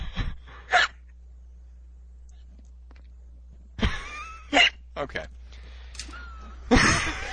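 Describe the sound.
Hiccups: several short, sharp vocal jolts coming irregularly with pauses between them, and a single brief spoken word near the start.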